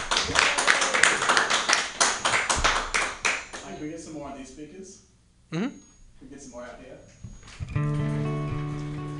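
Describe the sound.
An audience bursts into a loud round of applause, dense clapping that fades after a few seconds, followed by people talking and then a steady, sustained musical tone.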